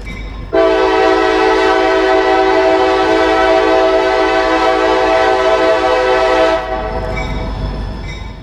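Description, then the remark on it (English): A loud, sustained train horn sound effect blares for about six seconds with rich stacked tones, then cuts off, leaving a low rumbling of rail noise underneath. “We could do a train horn.”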